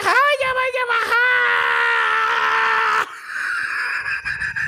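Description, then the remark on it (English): A man lets out a long, extremely loud yell into his microphone, his voice straining and distorting for about three seconds before it cuts into a harsh, noisy crackle. “I yelled so loud that my mic short seconded.”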